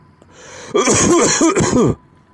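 A man lets out a loud burst of rough, hacking coughs, three or four in quick succession lasting just over a second, with no talking around them.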